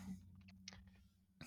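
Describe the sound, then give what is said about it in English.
Several soft, irregular clicks of typing on a computer keyboard into a web browser, fairly quiet, over a low steady hum with no one speaking. “riveting content here as I type things into my web browser that you can't see.”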